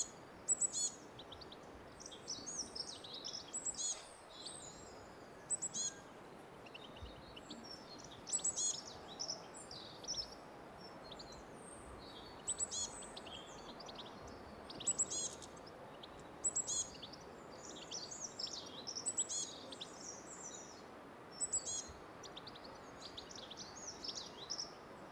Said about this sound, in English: Did you hear the squeakiness to that? Beep, beep, beep, beep, beep, beep, beep, beep, beep. That sound was Blue Tit.